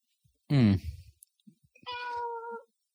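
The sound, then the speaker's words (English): A cat meows twice, first a loud, strained yowl, then after a short pause a longer, steadier, slightly nasal meow. No one speaks over it. “Seriously, Kitty. Seriously, Kit.”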